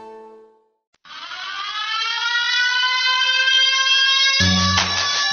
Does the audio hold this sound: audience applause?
no